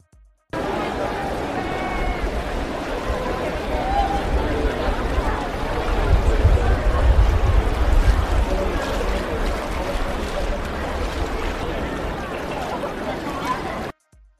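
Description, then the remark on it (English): Steady sloshing and splashing of tourists wading through knee-deep flood water in Venice, with a continuous watery churn and low rumble, overlaid by a background murmur of crowd chatter. “Venice is flooding again. Watch tourists wade through knee-deep water.”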